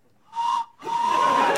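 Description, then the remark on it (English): A whistle is blown twice: a short shrill toot, a brief pause, then a longer, louder blast held for about a second, piercing with no talking. “I was going to ask him to, if you could just triumphantly say store brand and blow the whistle.”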